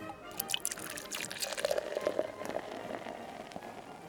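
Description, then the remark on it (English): Pusser's Navy Rum being poured into a glass, a steady trickle of liquid with bright splashy glugs and drips, running for a few seconds with no voices over it. “I'm still drinking, by the way, Pusser's Navy Rum.”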